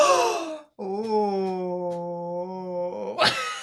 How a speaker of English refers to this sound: Oh. You got two gay gasps through that one.